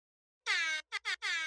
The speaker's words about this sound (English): That's what I got you. He bought an air horn specifically for this occasion.